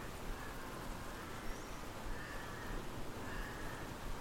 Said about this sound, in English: It's an old train carriage, this shack of mine, but with the rain hammering down on the tin roof and soaking into the dirt and pooling between the stumps on which the wagon is raised, it was easy enough to imagine it as a ship instead.